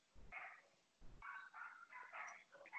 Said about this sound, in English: Yeah, I thought that was your little dog. Mm-mm. Patty just be barking, but that's all.